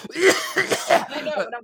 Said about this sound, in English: I fucking cough like my dad, dude.